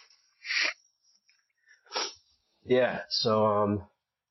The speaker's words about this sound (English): All right, after all that, let me blow my nose.